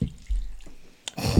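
Tennessee whiskey glugs and splashes into a big cup, a brief drip then a steady, fuller pour in the final moments, with no talking.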